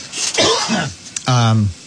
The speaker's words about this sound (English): Excuse me for coughing.